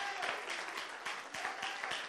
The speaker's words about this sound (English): Let's give the Lord a strong hand clap offering, one that he is worthy of. Hallelujah.